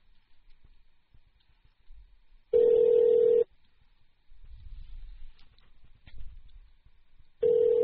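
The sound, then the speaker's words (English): A phone line rings out as a return call is placed: a steady, mid-pitched ringback tone sounds for about a second, followed by a pause with faint rustling and low rumble, then the tone starts again. “All right, I'm going to call her back.”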